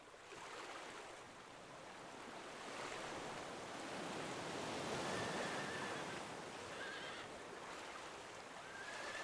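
Steady roar of sea surf fills the scene, with a few brief, thin whinnies from horses swimming and paddling through the sea rising faintly above the rushing water in the second half. No one speaks.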